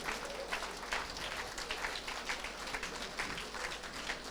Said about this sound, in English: You have 1 minute to finish. 1 minute. Clap your hands 1 minute and just finish this.